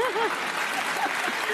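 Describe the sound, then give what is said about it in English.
An audience claps in a steady, dense wash of applause that holds at an even loudness throughout, with a few faint voices briefly rising over it near the start. “If you remove the obstacles, yeah, you can clap.”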